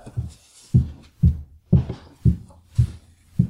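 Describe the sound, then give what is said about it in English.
A woman's high heels climbing the staircase of a home: seven steady, evenly spaced steps, each a heavy thud with a sharper click on top, alone with no voices. “That's my wife's high heels going up our staircase.”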